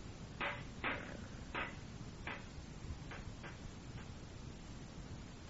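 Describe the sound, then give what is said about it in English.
A rock bangs against a bent metal grill grate for a fire, being used to straighten it, in about seven sharp, irregular strikes, loudest at first and fading toward the end, over steady background hiss with no talking. “Who's hammering like...”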